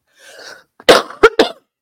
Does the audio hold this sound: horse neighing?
no